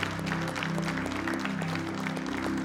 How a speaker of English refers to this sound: Let's give the Lord a hand clap if you guys wouldn't mind, please.